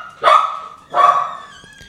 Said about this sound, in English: He's going to keep barking because my roommate's home.